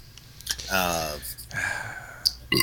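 sneeze

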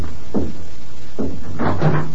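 door opening

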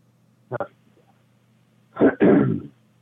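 throat clearing

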